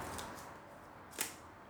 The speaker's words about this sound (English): You've literally just ripped the bit of paper.